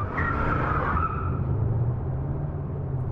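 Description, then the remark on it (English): A car peels away fast with a loud, sharp tire screech that lasts about a second, then fades into a steady low engine rumble as it drives off. “We're going real fast, Mr.”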